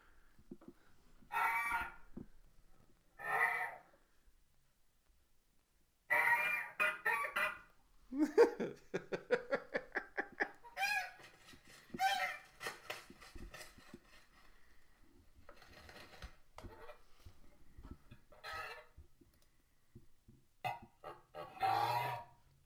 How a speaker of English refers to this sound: You guys want to hear more fucking geese? Hold on a damn second. Let's play a little more of the damn geese, and we'll get back to the Golden Hammer.